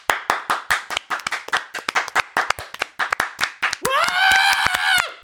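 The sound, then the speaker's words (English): A small group of four people, two sets of parents at a talent show, claps unevenly after a song, the sharp claps overlapping in a loose rhythm, then a loud whoop or cheer rises near the end while a few claps continue. “My song was met by thunderous applause and cheering.”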